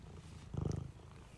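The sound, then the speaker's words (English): A cat purrs in a brief, low, rumbling burst with a steady pulsing rhythm, rising out of a quiet background and fading after a moment. No one speaks. “You were purring. We got it. Freaking cat, man.”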